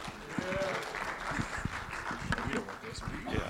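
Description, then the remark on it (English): An audience gives a round of applause for a man after a prayer for his restoration, a dense wash of many hands clapping at an even level, with a few louder claps and murmured voices mixed in throughout. “So I'll give a round of applause”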